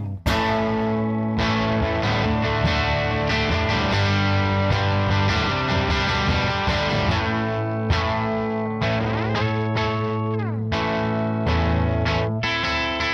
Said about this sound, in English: So that's a much more standard kind of overdrive-y sort of sound. Still, it's not your classic overdrive sound. It's not a Tube Screamer. It's not, you know, a 250. It's not, you know, a Klon or whatever. It's its own thing.